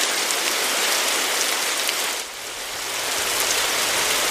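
Steady rainfall on a rainy day in Los Angeles hisses continuously with dense pattering drops, briefly softening a little about halfway through before returning to full strength. No voices.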